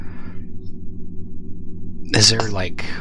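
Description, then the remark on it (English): A low, steady ambient drone hums throughout, dark and eerie, with a faint breathy hiss at the start before a brief voice-like swell breaks in near the end. “There is a sort of breathing hum to this place.”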